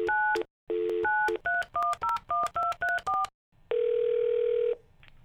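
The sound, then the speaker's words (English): Touch-tone beeps as a phone number is dialed to call Child and Family Services: a couple of longer tones, then a quick, even run of about eight short pitched key beeps, followed by one long, steady lower tone. “Meanwhile, Premier makes a call to Child and Family Services.”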